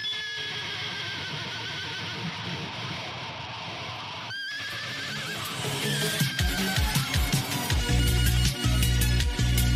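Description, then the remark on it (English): A horse's whinny pushed through heavy distortion, harsh and buzzing, with a brief break partway before it swells into a louder, denser, crunching roar. No one speaks. “Folks, for now, I'm going to leave you all with the sound of a horse being fed through a distortion pedal.”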